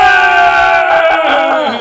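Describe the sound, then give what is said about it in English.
A group of people scream together, loud, several overlapping high voices held in one sustained shriek that wavers slightly before trailing off. “Come scream with us. It helps.”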